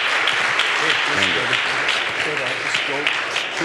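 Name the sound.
audience applause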